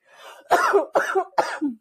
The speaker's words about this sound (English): I can't even laugh at that coughing. Oh my goodness.